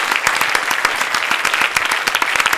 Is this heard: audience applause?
yes